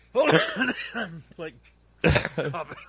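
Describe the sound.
A man coughs hard, rough throat-clearing hacks and strained voiced sounds, then a pause before another harsh burst of coughing.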